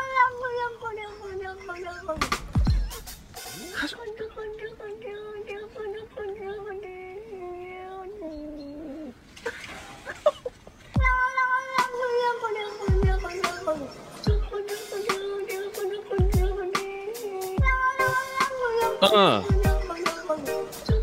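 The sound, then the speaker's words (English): A cat's drawn-out, wavering meows ring out loud, then a punchy beat added by a producer drops in, with sharp percussive hits landing under repeated meow-like tones that ride along with the rhythm. “So the beginning is the cat making that natural cat's sound. Okay. And then he puts the beat on it.”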